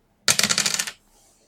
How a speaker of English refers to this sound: wait, I rolled 2 dice at once. I don't know what to do.